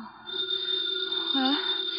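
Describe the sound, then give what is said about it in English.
A house telephone rings with a steady, unbroken electric bell tone that holds for the full two seconds, fairly loud, over a faint background hum. “The phone is ringing. Let it ring.”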